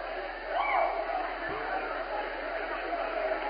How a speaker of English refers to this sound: So a very, very pleasing victory for head coach Russ Freeze here in front of the home folks. Some of the crowd making their way out right now, but a big win.